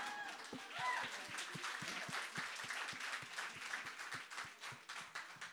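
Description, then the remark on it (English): An audience applauds steadily for several seconds, a dense patter of many hands clapping at once with a faint rhythmic pulse, while a few voices murmur underneath. “I accept applause, by the way.”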